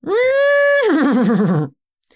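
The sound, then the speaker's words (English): A person imitates a horse whinny: one loud call that starts as a long steady high note, then breaks into a wavering, descending warble before cutting off. No other sounds accompany it. “So the horse whinnies, I'll give you my rather poor imitation, but it goes like this.”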